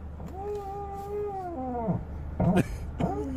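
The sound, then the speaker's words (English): A voice imitates a noise from under a car's hood with a long, husky-like howl that holds steady and then bends downward, followed by two short, rough yelping bursts. “Sounds like a husky under the hood.”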